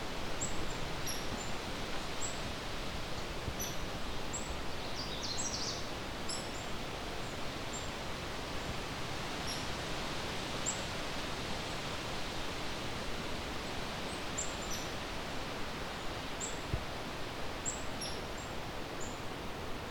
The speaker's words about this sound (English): Black-capped chickadees and hairy woodpecker. Oh. And another Canada warbler.